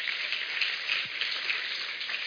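A crowd applauds in a dense, steady patter of many clapping hands, holding an even, moderate loudness without pauses or voices for a couple of seconds.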